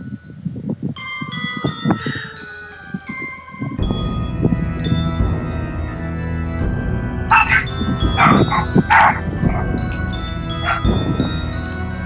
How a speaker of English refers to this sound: The dog was barking in the back. I think that adds to it. That's what the dog does when she likes something.